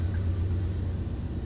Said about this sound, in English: I can hear the train. Can you?